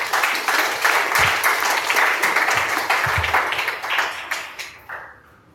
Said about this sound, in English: Let's clap for Thomas. Kubeni Thomas.